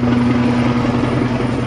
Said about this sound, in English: The videos capturing the circling aircraft were taken at 9:30 a.m. Sunday morning, 15 minutes before the helicopter went radio silent.